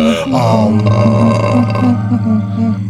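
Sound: long belch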